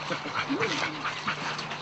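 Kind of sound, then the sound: animal, dog barking and whimpering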